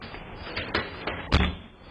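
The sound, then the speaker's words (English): A door being forced by two armed men breaking into an apartment in Dallas, caught on a Ring camera: a few sharp knocks and bangs build to one heavy, booming slam near the end over a steady background hiss, with no one speaking. “I think this was the door.”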